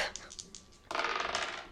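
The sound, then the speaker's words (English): A few light clicks, then a burst of dense clattering as dice tumble and rattle across a tabletop, fading slightly at the end. No one speaks. “I'll pass the dice.”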